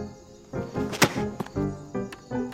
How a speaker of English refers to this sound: Enough. Step aside. I'm kicking down this door.